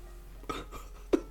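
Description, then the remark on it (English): A cork is worked out of a bottle, a soft scrape followed by two short, hollow pops, the last one loudest, with no one talking. “Just this cork pop.”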